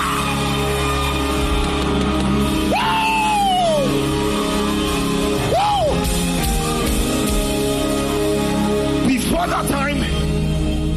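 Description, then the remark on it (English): A crowd at a religious gathering roars in the spirit, shouting to God, in a steady, dense wash of voices, with several individual yells rising and falling above the din, around three, six and nine seconds in. “I hear you roar right now in the spirit. I can hear your voice. You are roaring.”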